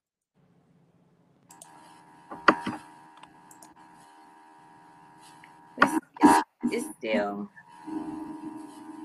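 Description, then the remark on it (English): Garbled phone-call audio with a steady electronic whine and echoey feedback, broken by several loud, harsh bursts of noise near the end; a voice briefly speaks through the distortion. “But honestly, yeah, she's saying it's the echo and a loud noise belter.”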